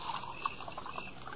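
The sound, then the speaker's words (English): A steady, gurgling pour of coffee into a cup, a soft continuous splash with small bubbly bursts, heard alone for just over a second. “Some more coffee”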